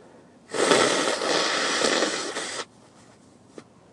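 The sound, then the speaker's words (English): A single long, forceful nose blow by someone who is sick, a loud rough hissing honk lasting about two seconds, followed by quiet with a faint click afterward. “Gotta blow my nose before I rip this, and I don't care.”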